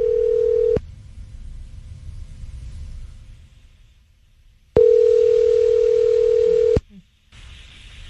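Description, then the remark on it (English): A telephone line tone sounds loud, a brief burst followed by a pause with low rumble, then a steady two-second ring tone, as a caller from a local flower shop phones a man. “That's the official dial tone.”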